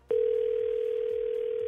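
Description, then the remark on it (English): A steady, unbroken telephone ringing tone starts abruptly and holds at an even pitch, loud, like a line tone heard through a phone receiver as a call is placed, with faint rhythmic thumps underneath. “So we're going to call him. With you listening on the phone, are you ready to do this?”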